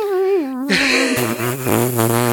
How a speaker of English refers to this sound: Dude, she farted and blew out the window.